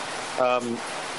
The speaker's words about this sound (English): Hey, I got a lot of static on my end. Is that from me, or is that coming through? I am not. It might be the downpour that it came down on my studio.